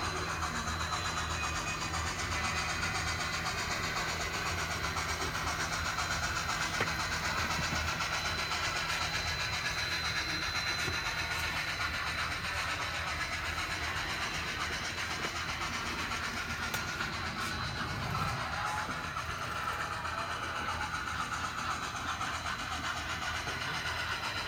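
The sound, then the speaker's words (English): A model train runs steadily on its layout, a continuous mechanical hum and rumble with faint clicking, holding an even loudness throughout with no talking. “So I'm waiting until 11:15 on the fast clock to leave the station where I am right now.”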